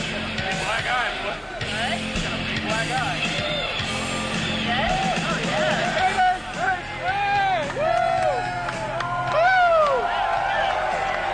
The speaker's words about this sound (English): See, we're all cheering him right. And everything. We're not supposed to cheer him.